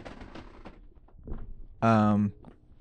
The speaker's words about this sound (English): I'm going to move my chair. It's going to squeak.